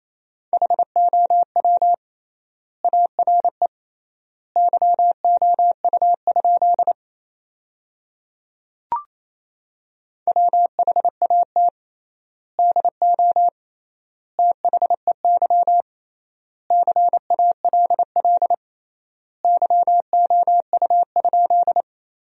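Morse code sent as a single steady mid-pitched tone at 28 words per minute with triple word spacing, keyed into rapid dots and dashes spelling sentences from the 100 most common words, with clear pauses between words. One brief click breaks a gap midway, and no one speaks.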